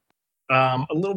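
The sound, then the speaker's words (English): A voice imitates an orb responding with robot-like beeps and whistles: a sustained warbling tone followed by a few quick chirpy pitch glides, fairly loud, after a brief silence. “The orb just responds and beeps and whistles.”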